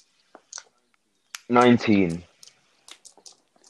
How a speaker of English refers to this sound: Roll for Entangle thingy. So I'm just preparing my dice for what's about to happen.